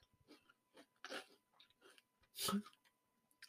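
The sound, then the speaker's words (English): A woman chews food with wet, irregular crunchy bites and mouth clicks, one louder crunch partway through, over a quiet background with no talking. “I hope you guys can hear her chew.”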